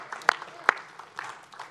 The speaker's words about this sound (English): Yeah, let's give her a clap.